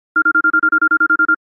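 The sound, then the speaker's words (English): A phone rings with a rapid electronic trill, about a dozen quick pulses in a steady burst lasting just over a second, clear with no voices, as a man places his first call to a woman. “finally had Rachel's phone number, and then he gave her a call”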